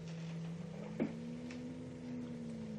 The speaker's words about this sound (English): This is a good scene to hear Jimmy Shields' sound effects. You can hear a hum which rises and falls, which is always there. Something is always there, which makes you uneasy.